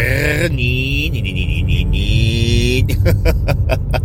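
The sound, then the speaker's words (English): A car engine revs loudly in Prescott Valley on a crisp 35-degree morning with light snow flurries, its droning pitch climbing steadily for a couple of seconds before breaking into rough, pulsing bursts as the throttle is worked. “And yes, you hear the revving of the car.”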